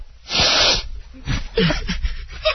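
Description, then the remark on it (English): A single sharp, breathy sniff, about half a second long, as one person sniffs another person, followed by soft murmured vocal sounds. “Come here and give a sniff.”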